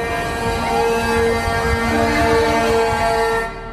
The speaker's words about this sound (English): truck drivers from all over the country had descended on the Canadian capital to rail against COVID restrictions. The Freedom Convoy, as they called themselves, occupied the city centre with street parties and a chorus of honking day and night.